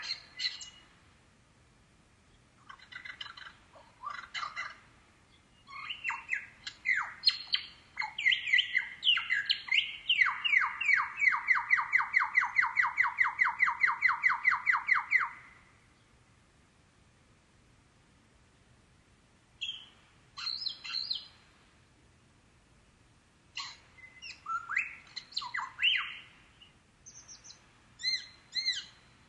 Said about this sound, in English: forests of eastern Australia, and you hear a bird. Great. Because everybody likes birds. And I'll give you another hint. It's not a kookaburra.